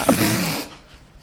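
A single loud, explosive sneeze with a sharp voiced burst that cuts off abruptly and leaves near silence behind it.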